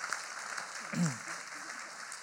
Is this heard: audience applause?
yes